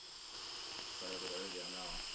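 A long, steady, timed inhale from a smoking rip, a continuous airy hiss lasting a couple of seconds, with a low, wavering tonal buzz rising under it partway through.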